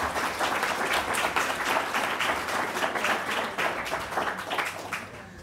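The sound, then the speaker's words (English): A crowd applauds the panellists steadily, many hands clapping in a dense, sustained wash, then tapering off slightly toward the end. “Please give our fantastic panellists a huge round of applause.”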